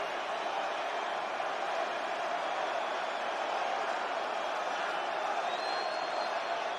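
A large crowd at WrestleMania in the SkyDome, Toronto, on March 17, 2002, chants and roars for The Rock and for Hogan, a thick, steady wall of many voices holding the same loud level throughout with no clear breaks or single voice standing out.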